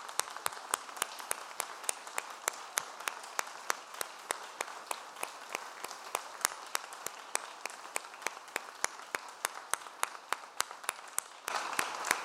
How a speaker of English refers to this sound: I like to end standing up, so could you stand up with me and give our leaders a round of applause for doing what they do?